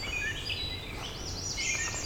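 Catbirds and a wood thrush sing one morning in the Dundas Valley, their varied, warbling phrases overlapping through a steady outdoor hush with no one speaking; the catbirds are very loud and the wood thrush very talkative.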